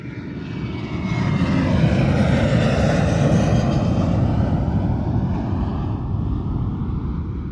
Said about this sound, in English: There's the aeroplane, which means it's time for Sky Plaza Road.